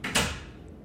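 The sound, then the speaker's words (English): A door swings shut with a quick soft thud and brief rattle, followed by a fading low hum as an AC unit kicks on; no voices. “As we're talking about all this, my door closed, but the AC unit kicked on, so worry not.”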